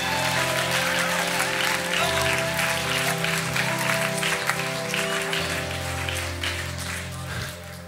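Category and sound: crowd, audience clapping and shouting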